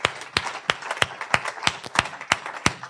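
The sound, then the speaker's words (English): An audience at PCLV claps for themselves together in a steady, quick rhythm, about three sharp claps per second, with a busy wash of scattered clapping filling the gaps between the beats. “So I'll give yourself a hand clap.”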